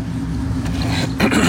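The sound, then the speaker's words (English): A truck engine idles steadily with a dog inside the truck, a low, even rumble that holds throughout, with a brief burst of brighter noise near the end. “If he's not in the truck when it's running, he'll vibrate like your best friend beside your bed.”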